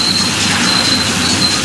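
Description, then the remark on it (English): A tram rolls along its rails with a loud, steady rumbling roar, broken by brief high-pitched wheel squeals that come and go. No voices are heard. “Well, Huey must be the tram driver, so...”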